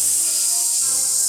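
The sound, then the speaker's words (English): A voice imitates a snake's hiss: one steady, bright, breathy hiss held for just over a second, loud, with no words around it. “It's a snake person in space.”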